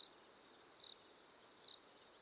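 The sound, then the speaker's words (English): A big green cricket chirps in three short, evenly spaced bursts over a steady, faint hiss of background noise, the chirps high-pitched and fairly quiet, with no voices. “She even waves hello to a big green cricket.”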